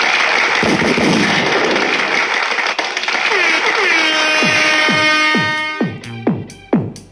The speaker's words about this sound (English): Give it a clap. Give it a round of applause, man.